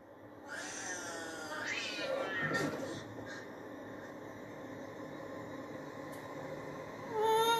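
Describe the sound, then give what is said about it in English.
A stray cat, held by a boy, meows loudly and insistently in drawn-out, wavering cries, with a sharper yowl near the end and faint background noise throughout. “who's holding the cat?”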